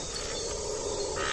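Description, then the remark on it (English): Howler monkeys howling at night, with grunting in the background: a low, steady, wind-like moaning drone that holds for the whole moment, over a constant bed of insect-like chirring. No one speaks. “It's the howling. That's the grunting in the background. That's the monkey?”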